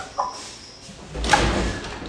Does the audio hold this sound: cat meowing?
no